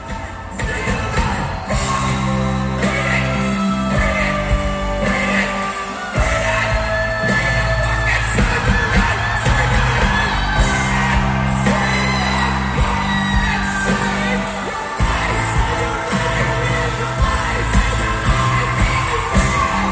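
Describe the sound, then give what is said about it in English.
A singer yells and screams over loud, dense live music, with heavy bass and crashing drums filling the whole stretch and a crowd whooping underneath. “yelling so loudly and just screaming.”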